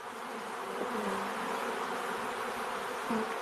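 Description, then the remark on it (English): A dense, steady hum of many bees buzzing together, continuous and fairly loud throughout, with a couple of brief louder swells as individual bees pass. “It means the bees are back.”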